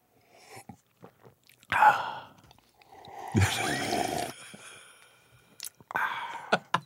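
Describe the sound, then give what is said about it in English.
A person imitates loud slurping sips of coffee with their mouth: a short wet slurp, then a longer airy, bubbling slurp, followed by a few smacking lip sounds. “We love the sipping coffee— And loudly, you know, on the phone, right. You know, this sound.”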